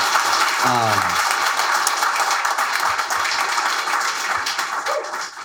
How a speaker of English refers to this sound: Give these folks a round of applause, please.